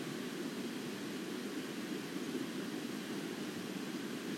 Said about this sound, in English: So let's listen to the water a little bit.